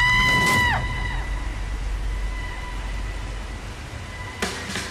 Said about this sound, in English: Yes, let's listen to a little bit of this. And yes, there are screams, but it's still kind of very relatable.